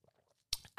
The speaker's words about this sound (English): Okay, so I'm going to take one more sip of my energy drink before we get into this.